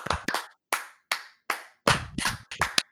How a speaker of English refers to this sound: I don't know if you can hear that. It doesn't look like it was activating from my clap, but I was clapping.